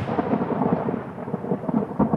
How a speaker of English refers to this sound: were asleep in their small white trailer when a lightning storm exploded in the sky.